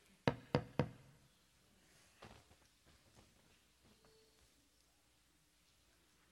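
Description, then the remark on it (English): Three quick, firm knocks on a door, evenly spaced, followed by quiet sounds with faint shuffling. “Didn't hear you knocking.”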